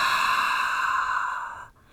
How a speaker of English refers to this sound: I want you to continue breathing. So let's let all the air out of our body now.